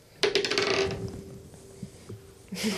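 Dice tumble and clatter across a hard surface in a quick burst of sharp clicks that fades, with a faint steady ringing tone beneath and another brief rattle at the end.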